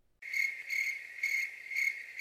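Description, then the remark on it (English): A cricket chirping sound effect starts abruptly after a brief silence, a steady, continuous high trill that pulses in regular bursts of intensity, clear, with no voices. “We're going to go ahead and add crickets there. We'll edit that out. I mean, we'll edit the crickets in.”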